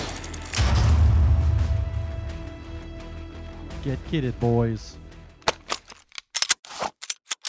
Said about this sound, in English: Copy, Control. We're taking automatic weapons fire from elevated position. Finding cover, over.